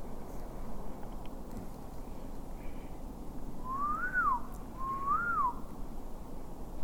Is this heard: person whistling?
yes